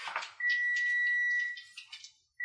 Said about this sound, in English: Beep. …, stop swearing.